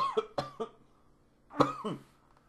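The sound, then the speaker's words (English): A quick burst of three harsh coughs, then a pause and two more raspy coughs, fairly loud with no talking. “It's gonna be nonstop for a bit because we're both coughing a lot.”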